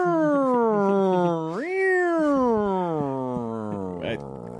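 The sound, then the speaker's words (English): A long, drawn-out meowing wail that swoops up in pitch and slowly sinks, like a siren, probably a human voice imitating a cat. It is loud and continuous for several seconds. “The cat is driving the cop car, doesn't know how to work the siren, so just meows out the window.”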